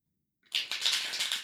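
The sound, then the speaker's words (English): A quick riffle of playing cards being shuffled, a dense papery flutter of rapid clicks that starts abruptly after a short silence and continues steadily. “Go ahead and take a moment, close your eyes, listen into the sound of the cards being shuffled.”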